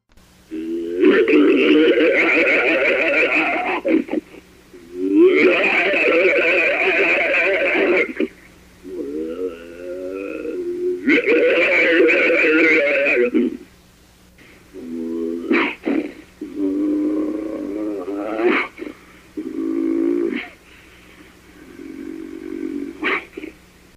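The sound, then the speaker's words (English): An unknown creature, not a bear, that left a big five-toed footprint in the mud, snarls and growls in loud, rough bursts: several long, drawn-out roars, then shorter, choppier growls, all forceful over a faint steady hum. “The snarls and growls could startle anyone”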